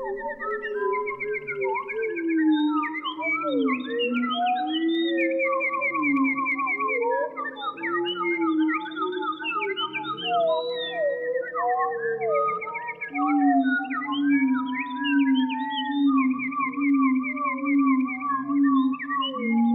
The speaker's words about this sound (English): We leave you this week with a concert from a Canadian forest. Bernard Ford employed a few studio techniques and effects to create this composition based on a recording he made of a single wood thrush near Mount St. Hilaire in Quebec.